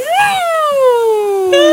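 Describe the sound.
A voice imitates a kid's blow-in toy horn: a loud, buzzy tone swoops up briefly, then slides slowly downward in pitch for over a second before a short, higher restart.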